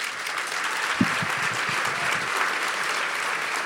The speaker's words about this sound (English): Thank you. That was my wife who clapped first. She's heard this shite before.